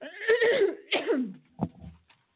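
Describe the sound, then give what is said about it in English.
A raspy cough comes in a couple of harsh bursts followed by a short throaty catch, fairly loud and with no talking over it. “I feel another cough coming on.”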